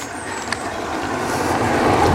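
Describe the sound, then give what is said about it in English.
A car rumbles past, a broad steady roar of road noise that swells gradually over a couple of seconds with no voices. “Another car.”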